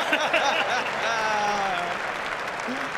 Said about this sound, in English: Oh, that was fun. Oh, and he's applauding himself. Well done.